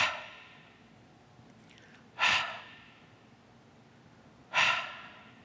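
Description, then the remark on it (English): Two forceful exhalations about two seconds apart, as a person breathes on people one by one, each a loud rushing whoosh of air that fades quickly, with quiet background between them and no talking. “And then he moves one by one, breathing on them.”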